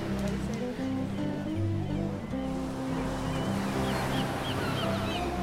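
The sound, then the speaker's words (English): Ocean waves wash steadily onto the shore, a constant broad hiss of surf with a low rumbling undertone and no clear pauses between breakers. “Scamp barked at the waves.”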